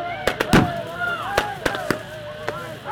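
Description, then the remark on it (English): Police firing tear gas and rubber bullets and spraying water hoses at protesters near a pipeline construction site in sub-freezing November temperatures: a string of sharp, loud bangs and pops at irregular intervals, with a crowd shouting and yelling continuously underneath. “In November, he watched videos, like this one posted by The Guardian, of police spraying protesters with water hoses, tear gas, and rubber bullets in sub-freezing temperatures.”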